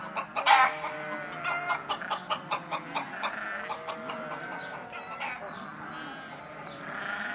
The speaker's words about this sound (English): I hear the chickens going cluck, cluck, cluck. They are dancing all around.